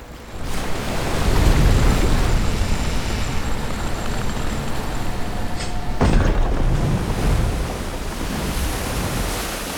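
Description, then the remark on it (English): A heavy safety wall mechanism activates with a sharp, loud clunk partway through after a button is pressed, holding back a tidal wave, set against continuous roaring surf and wind-like rushing noise. No one speaks. “Safety wall is activated and stuff. No waves getting past here, fam.”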